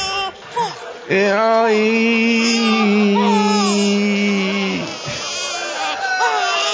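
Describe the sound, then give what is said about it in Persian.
A voice imitates a baby crying: one long, drawn-out wailing cry, loud, with a wavering, bleat-like tone, framed by brief vocal sounds at the start and end. “این بچه تشنه است، پدر سگ عرق بیدمشک بدین بخوره، عرق بدین، بچه داره گریه میکنه.”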